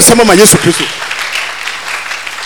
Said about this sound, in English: Oh, I thought you were going to clap for Jesus.